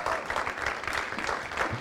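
A crowd applauds steadily to welcome the live stream viewers one morning, a dense, even wash of clapping that holds at a fairly constant level throughout with no voices standing out.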